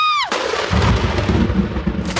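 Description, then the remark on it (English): A sharp, loud crack of thunder with lightning bursts in after a brief descending tone, followed by a dense, rumbling roar that sustains heavy for the rest of the moment. “Where is all this lightning coming from?”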